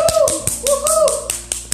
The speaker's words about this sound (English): I need you to give it to him, my baby, with a big round clap of applause.